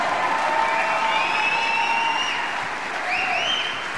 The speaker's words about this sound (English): Can we give the worship team a huge round of applause?